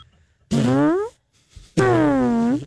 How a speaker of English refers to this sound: Saved by a fart.